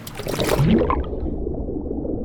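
A bag being lowered into dirty water full of green stuff plunges in with a splashy, sloshing rush, then settles into a low, steady underwater murmur and gurgle that continues to the end, fairly loud.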